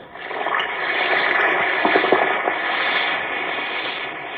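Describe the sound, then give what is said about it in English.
An Alka-Seltzer antacid tablet fizzing in water: a steady, dense hiss of bubbling with small crackling pops, holding at an even moderate loudness for several seconds with no voices. “Listen to it fizz.”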